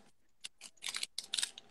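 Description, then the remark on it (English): Sheets of old-style parchment paper being stacked rustle and crinkle in a quick series of crisp, papery bursts that grow busier toward the end, with no voices. “No, it's parchment paper, the old style.”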